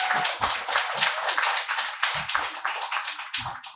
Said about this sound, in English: Let's give her some applause.